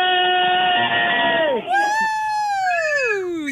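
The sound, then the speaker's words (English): Loud, excited shouting and high-pitched cheering from a family, including twin children, who have just won a toy shopping spree, several voices at once, sustained, with overlapping yells rising and falling for a few seconds. “Well, I want to hear a whole lot of shouting right now because you've just won the toy shopping spree!”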